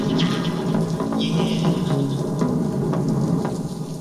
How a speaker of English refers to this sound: You hearing what the showmanship? They got their little rain sound in there.